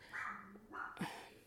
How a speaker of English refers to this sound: Sorry, you're gonna have to hear my dog in the back, cause I'm not cutting, I have stuff to do and I'm not trying to edit.